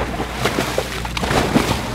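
Several splashes as four divers jump into the sea one after another, short bursts of spray over a steady rush of wind and sloshing sea.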